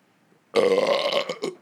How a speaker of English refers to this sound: Oh, man. Like that burp. Sorry, everyone. This is the disgusting episode of Married with Movies.